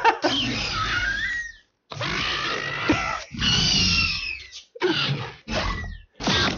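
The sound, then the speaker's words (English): A run of loud, screeching velociraptor cries from a sound-effect video running through every raptor cry, five harsh, gurgling shrieks in quick succession with brief silent gaps between them and no talking. “Just every raptor cry throughout the entire thing.”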